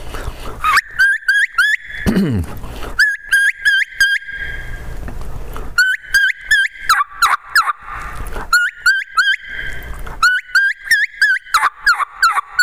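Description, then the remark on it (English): A reed turkey call plays a light kee-kee run, calling to hens: several bursts of rapid, high, whistling squeals that rise in pitch and end in sharper yelping notes, repeated in quick series with short pauses between. “But I do some light kiki running.”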